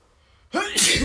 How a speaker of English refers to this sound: Oh, I inhaled smoke. Yeah, that's why I was. And my nose is down, about to sneeze. Oh, excuse me.